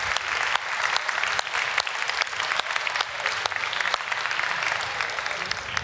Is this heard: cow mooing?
no